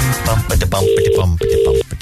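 An outgoing phone call from Cork's Red FM to a listener rings with a steady double-burst ringback tone, two short electronic rings heard over a busy background of music and studio sound.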